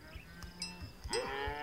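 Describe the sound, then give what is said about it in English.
Hereford cattle low in a farmyard, ending in a loud, drawn-out moo with a rising and falling pitch, over scattered rustling and faint knocks. No one speaks. “A little farmhouse, a herd of Herefords.”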